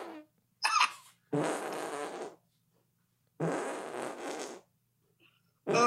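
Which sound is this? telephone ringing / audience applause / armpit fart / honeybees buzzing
armpit fart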